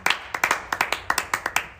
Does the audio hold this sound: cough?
no